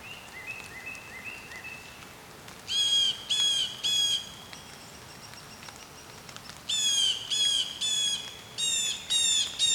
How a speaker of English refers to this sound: Loud jay. That's a blue jay.